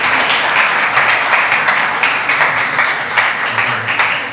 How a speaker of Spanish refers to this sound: Quiero pedirles que recibamos rápidamente con un aplauso a un actor que he invitado